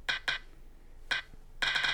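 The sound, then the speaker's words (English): A spinning prize wheel on a phone clicks in short bright bursts, a few separate ticks at first and then a rapid, steady run of clicking at the end, fairly loud with no talking. “Maybe check if my phone is on silent because you got to get the clickety sound.”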